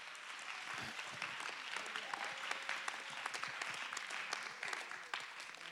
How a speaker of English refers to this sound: Come on, somebody clap your hand.